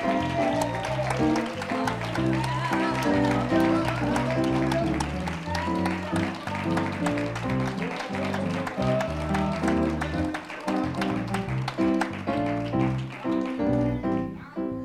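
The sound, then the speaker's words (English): An audience claps their hands in a steady rhythm in praise and thanksgiving to the Lord, the claps blending into loud, full church music with organ or keyboard chords, continuous throughout. “Oh, somebody give the Lord a hand clap of praise and thanksgiving.”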